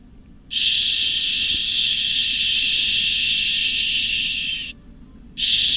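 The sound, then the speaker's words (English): A baby shusher (baby soother) gives off a steady, loud, high-pitched artificial shushing hiss, like white noise, for about four seconds, cuts out briefly, then starts hissing again. No voices are heard. “It's kind of like white noise, but it makes an artificial...”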